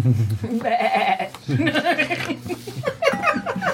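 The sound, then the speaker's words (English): A person bleats like a sheep, drawing out several wavering, nasal "baa" cries one after another, fairly loud, with a bit of chuckling mixed in. “The sheep goes up and tries to eat the energy ball.”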